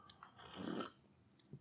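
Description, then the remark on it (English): A single soft, wet gulp of tea being swallowed, a throaty swell lasting about half a second, with faint breathy mouth noises before and after and no talking. “I'll stop swallowing the tea.”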